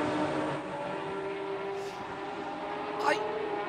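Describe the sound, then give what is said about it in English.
A GT3 Mercedes-Benz race car engine, fired up again after stalling, drones steadily at a low, even pace as it leaves the pit lane onto the circuit for qualifying, then briefly revs higher near the end as it pulls away, continuous throughout. “Fires it up again. What a magnificent racing car out onto the circuit.”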